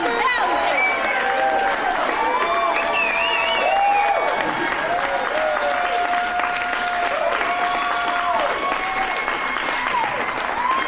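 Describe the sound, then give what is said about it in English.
A large crowd cheers and applauds continuously as a keynote speaker rips a thin blue line flag in half, a dense wash of clapping with many voices shouting and whooping over it, loud and sustained for the whole stretch. “Then one of the keynote speakers got up and bravely tore pages out of the Bible after ripping a thin blue line flag in half in front of a cheering crowd.”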